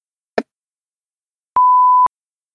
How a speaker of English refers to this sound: Oh my God. Vacuum cleaner. I'm going to stop. You know. It's like, what is that noise? Wait, are you stopping the vacuum from your phone? Yeah. So cool. It's not stopped yet. Sometimes he doesn't listen.